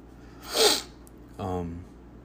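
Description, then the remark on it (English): A single loud, sharp sniff, a breathy rush of air lasting about half a second, followed shortly by a brief voiced grunt-like sound. “Excuse that sniff. That sniff was actually, like, really loud.”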